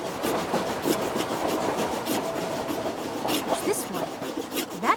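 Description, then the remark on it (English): An eraser rubs steadily back and forth across paper, a close, continuous scratchy friction with a loose rhythm of strokes lasting the whole time, no voices present. “being propelled by an eraser rubbing on paper.”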